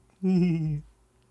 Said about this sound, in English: That was a weird burp.